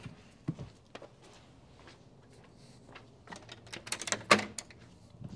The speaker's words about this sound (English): I'm going to lock the door.